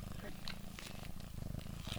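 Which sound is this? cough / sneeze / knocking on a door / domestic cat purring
domestic cat purring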